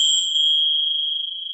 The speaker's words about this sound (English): Got a set of tinsel bells. I've seen those before. They just ring.